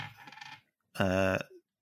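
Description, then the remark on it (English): A short rattle and clatter of dice tumbling across a hard surface, fairly quiet, rolled to predict a football match score, followed by a brief sustained vocal tone. “I'm going to let the dice do it again this week, but I'm going to do it a different way.”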